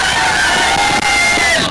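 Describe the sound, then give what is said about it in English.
A loud, dense crowd cheering and shouting at the Thin Yan water festival in Yangon, a continuous roar of many excited voices with high whoops and yells rising over it throughout. “But here are some audio clips from our time at Yangon that it absolutely won't do it any justice for how crazy it was.”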